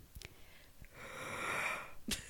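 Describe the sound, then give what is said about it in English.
A person lets out a single drawn-out yawn, a breathy, strained sound swelling for about a second before trailing off, fairly quiet, with a quick sharp intake of breath afterward. “That is a yawn, not a question.”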